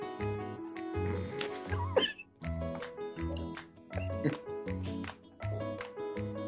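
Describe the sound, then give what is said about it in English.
A dog barks repeatedly in short, sharp bursts at an irregular pace, fairly quiet, over a steady background hum of sustained tones. “I don't have kids, but the dog is barking at something.”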